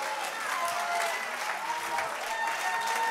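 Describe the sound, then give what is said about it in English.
An audience at a church service claps hands in praise to the Lord in a dense, steady wash of applause that stays loud throughout, with faint crowd voices mixed underneath. “Clap your hands and lift your voice unto the Lord in Jesus' name.”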